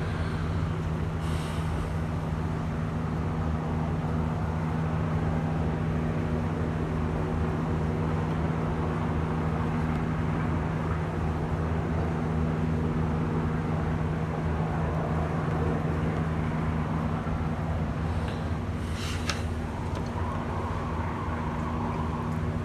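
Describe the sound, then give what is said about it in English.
A steady, droning rumble of helicopters overhead fills the scene, constant and moderately loud with a low engine hum, and no one speaks. “The helicopters are out.”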